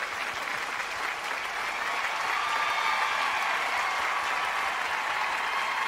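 Sustained applause from a large audience, a dense wash of clapping that holds steady and full for several seconds without any clear voices standing out.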